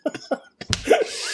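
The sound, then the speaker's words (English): A few quick, throaty coughs, followed by a harsher, fuller cough that trails off into a breathy rasp. No one speaks. “Oh, you're going to make yourself cough.”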